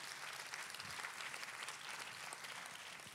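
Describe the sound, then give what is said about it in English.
An audience claps for Jesus in a steady, dense wash of applause, many hands overlapping into a continuous crackle that holds at an even level throughout, with no voices standing out. “Come on, let's give Jesus a big round of applause.”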